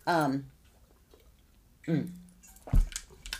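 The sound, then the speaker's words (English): A person takes a few soft sips of water and a small swallow, with brief vocal sounds between them and quiet pauses, ending in a gentle gulp and faint clicks. “I mean, right now I feel like I'm starving of water, you know, because I need to have a little sip here. Let me have a quick sip.”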